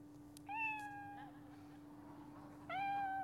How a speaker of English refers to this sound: What noise is that? A cat. What animal is it? A rabbit. Yeah, that's it.